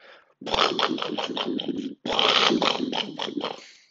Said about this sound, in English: Hey everybody, do you hear that? Thunder and lightning?